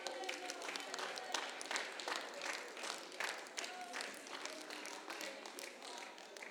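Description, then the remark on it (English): An audience at a church revival service claps their hands in a dense, steady burst of applause, with sharp individual claps standing out. Voices call out beneath the clapping throughout. “Clap your hands.”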